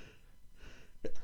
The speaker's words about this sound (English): And he sneezes in stages of 3. And he usually can hold off for the pod. It was a bad one.